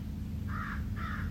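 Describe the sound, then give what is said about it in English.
Two harsh crow caws, one after another, ring out over a steady low rumble of outdoor background noise on a morning on the shores of Lake Superior in Northern Ontario. “Crows, of course.”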